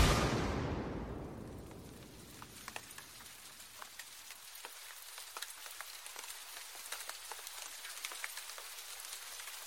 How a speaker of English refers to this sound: Rain, humidity, a canopy of trees, distilling a light greenish glow